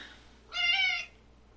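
A single fairly loud meow from a hungry male cat close to his dinner time, lasting about half a second with a clear harmonic, slightly whiny tone, surrounded by quiet background noise.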